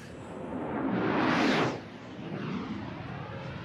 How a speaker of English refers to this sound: Can you hear me? I'm in the plane. I can barely hear you. This wind is pretty loud, but yes, I can hear you.